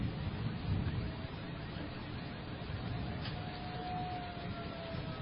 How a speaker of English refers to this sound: There's another car alarm. Yeah, I hear a car alarm.